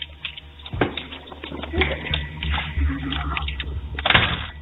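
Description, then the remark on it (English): A house door is unlocked and opened, with sharp clicks and clunks near the start and again near the end, while a muffled voice talks to dogs. “They even talk to their dogs as they unlock the door.”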